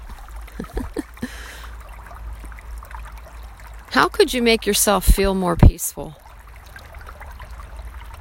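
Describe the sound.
A creek flows steadily in the background, a soft continuous rushing trickle running through the whole recording, while a man speaks briefly over it partway through.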